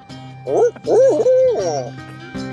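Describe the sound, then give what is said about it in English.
An owl hoot call rings out as a fairly loud series of wavering, rising-and-falling hoots that trail off, with a steady low hum underneath. “Let out a big big old hoop when you do, so we know you did.”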